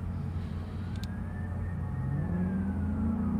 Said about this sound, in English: There goes another ambulance truck. My goodness, or fire truck. Yeah, something serious is going on.